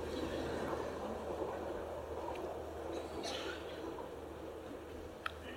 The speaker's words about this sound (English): So, oh Lord, a lot of trains this morning.